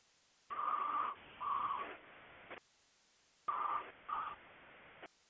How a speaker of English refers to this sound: Who the hell is breathing in the phone like that? I don't know. It's obnoxious.